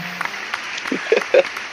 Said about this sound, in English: Ladies and gentlemen, please give a great round of applause for Gina Coleman.